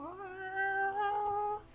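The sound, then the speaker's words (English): A single drawn-out, high-pitched meow from a tiny displacer beast kitten tumbling out of a basket that dangles from a tree's branches, fairly loud, holding a steady tone for over a second before fading, with no talking around it. “And tumbling out from like one of the baskets that kind of dangles off of the tree's branches is a tiny, displacer beast kitten.”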